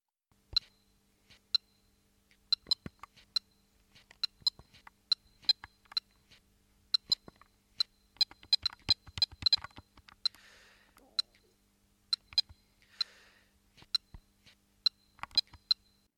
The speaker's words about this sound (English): In this view, tonic E beeps represent the constant onslaught of danger incurred by Donkey Kong, from which each life-saving jump offers relief. The dominant B beeps of each jump provide an interminable 5-1 cadence resolution